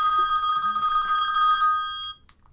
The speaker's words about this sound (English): I apologize for that. You just heard my phone ring. I usually remember to shut it down.